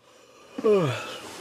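human body sound, a person yawning

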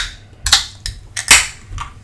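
food or drink, can being opened

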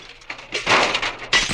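sound effect, mirror glass shattering

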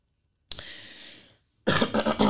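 human body sound, throat clearing and cough

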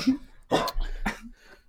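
animal, excited dog barking

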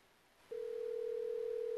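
signal or alarm, phone call ringing tone

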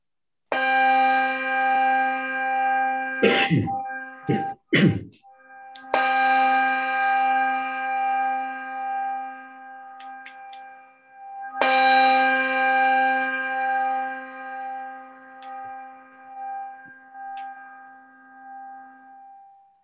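signal or alarm, church bells ringing

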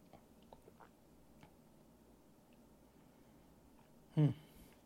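food or drink, sipping whiskey

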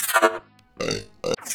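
human body sound, burp

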